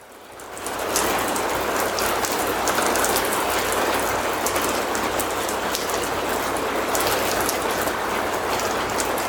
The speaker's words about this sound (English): Draw your attention back to the rain.